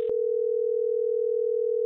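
A telephone line tone hums steadily and loudly for about two seconds after a brief click, a single unbroken pitch as B98.5 radio hosts place a call, with no voices present.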